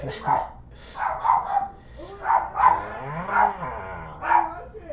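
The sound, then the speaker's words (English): Dogs bark in a rapid, irregular string of sharp yaps, some overlapping, with a brief wavering whine in the middle; the barking is loud. “Dogs have gone mad.”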